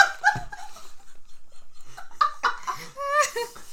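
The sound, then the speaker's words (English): Neighborhood dogs howl in response to a person's screaming cry, in short, wavering bursts, their tonal cries sliding up and down in pitch, with a brief cluster at the start and a louder run of overlapping howls near the end. “The voice acted as an alarm, and the neighborhood dogs howled in response to the cry.”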